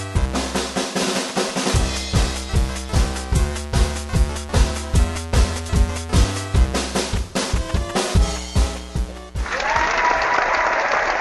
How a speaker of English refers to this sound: Thank you very much. Thank you for joining. I know you're not applauding me, but that's just fine.